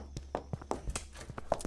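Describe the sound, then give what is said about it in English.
Quick, steady footsteps tap along at a brisk pace, soft, with a low hum underneath and no voices. “Quiet! I hear footsteps.”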